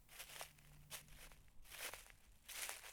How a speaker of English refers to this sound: The satisfying crunch of the curling amber maple leaves bouncing around the shady pathway I saunter down. The delightful scrunch of rustling foliage pierces the otherwise tranquil atmosphere.